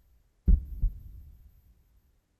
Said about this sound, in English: I think it sounds like a heartbeat. Yeah. And those of you who want to listen, you do hear the low sonorous thrums of a colossal heart are echoing throughout the mall, like a little softly.